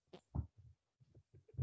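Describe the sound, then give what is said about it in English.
A small, squeaky fart: a few short, low, buzzy puffs that end in a brief higher-pitched squeak. Fairly quiet, with no talking over it. “No, did you rip ass? Yeah. I heard a little squeak.”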